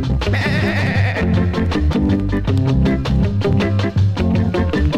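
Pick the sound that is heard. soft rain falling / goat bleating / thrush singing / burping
goat bleating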